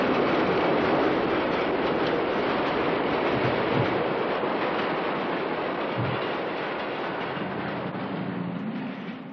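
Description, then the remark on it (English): A train rumbles past, timed to go by during filming, with a steady, dense roar of rolling wheels and rattling cars, holding loud for several seconds before slowly easing off at the end. “I remember Sylvester once saying, gee, it's really nice that those trains always seem to go by.”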